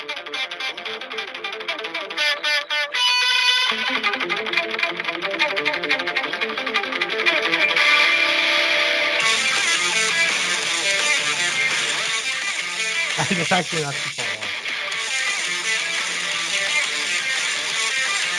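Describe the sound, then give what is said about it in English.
A recorded rock song plays back from a phone, loud and continuous, with dense distorted guitars and a steady driving rhythm, a brief dip near the end, and no one talking over it. “Dude, I used to listen to that song all the time, dude.”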